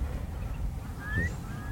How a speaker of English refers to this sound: So you can hear sort of roar of boats. Sound travels across the water so well, so sometimes you get these boats coming and mooring in Vorid Bay, doing a bit of fishing or cleaning their nets or whatever